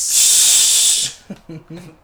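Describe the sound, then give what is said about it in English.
A loud, steady, high-pitched hiss like escaping gas runs for about a second, then cuts off and gives way to a few short bursts of a man's voice. “I have a gas leak.”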